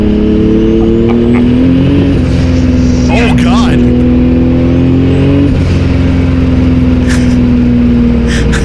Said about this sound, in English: There's a certain charm to this, with an exhaust that sounds like energy drink farts and a paint job that comes in a darker shade of downvote blue.